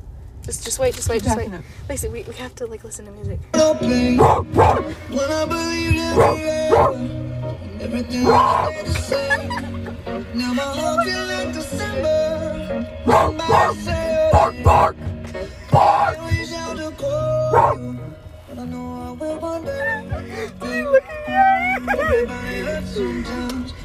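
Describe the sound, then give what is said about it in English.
A person imitating a dog barking at people: a long run of loud, rough, throaty barks and growly yelps, irregularly spaced, with no clear speech between them. “Let me bark at them because this is the moment I've been waiting for.”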